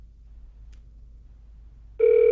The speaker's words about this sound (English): Ready? let's dial this number, see what we get. All right.